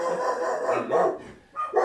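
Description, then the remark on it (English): A dog barks in a quick series of loud, yelping bursts, with a brief pause before a final bark. “gonna take care of his dog.”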